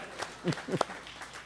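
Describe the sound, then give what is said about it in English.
A few sharp hand claps land together at roughly even intervals, fairly quiet, with brief voices murmuring between them. “One claps, everybody claps.”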